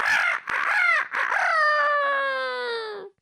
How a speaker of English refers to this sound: And so the next morning came. The rooster crowed.